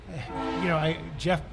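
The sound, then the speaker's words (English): A train horn blows in one sustained, fairly loud blast, its tone wavering slightly before briefly swelling again near the end. “I'm sure that train is doing that because they know we're live on the air.”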